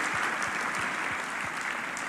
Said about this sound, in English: Let's clap our hands in agreement, can we?